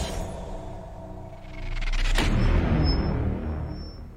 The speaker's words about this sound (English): That was close. Speaking of that explosion,